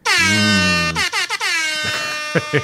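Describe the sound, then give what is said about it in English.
A defective air horn iPhone app plays a loud, blaring air horn blast that holds a steady harmonic tone for about a second, then breaks into several short stuttering honks that warble and sputter out. “If you could only see the defective air horns iPhone app.”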